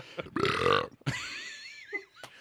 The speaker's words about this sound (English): 70s burp sound effects. Check.